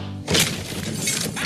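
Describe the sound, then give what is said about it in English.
A hand slams down onto a glass: a sudden hard impact bursts into loud glass shattering, followed by a bright, sustained spray of crackling shards that lingers for over a second after a low hum cuts out. “and that time the glass was a little off, and his hand slam was a little off, and it went down and it disintegrated the glass.”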